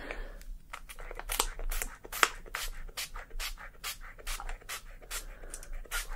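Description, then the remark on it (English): A spray bottle of scalp oil is sprayed onto the crown of the head, giving quick, repeated misting spritzes, each a short airy hiss in a steady uneven rhythm, about a dozen bursts with no talking. “Going to be spraying this”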